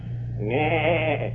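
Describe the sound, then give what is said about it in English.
A man's voice imitates a goat's bleat, one wavering, quavering call lasting about a second, fairly loud over a steady low hum. “Let me tell you, that's one of the finest goats in Crabtree County. I bet you can't make a noise as fine as that. I certainly can.”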